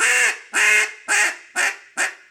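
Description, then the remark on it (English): Five loud, raspy duck-call quacks blown in a steady cadence, each a short nasal burst trailing off, evenly spaced about half a second apart, with no talking. “So the first step is one quack, five quacks, and then we'll put them into a cadence.”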